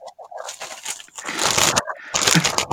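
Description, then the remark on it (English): A chip bag crinkles and rustles in loud, crackly bursts, with crisp crunching mixed in, building to two dense stretches of crackle separated by a brief pause. “Well, I'm gonna continue eating these chips because, so a little crunch every now and then.”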